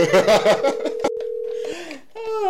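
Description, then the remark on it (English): A steady, single-pitched telephone dial tone hums for about a second, overlapping lively voices at the start, then cuts off before a brief stretch of noisy chatter and another voice. “We'll try one more time and then we're going to call”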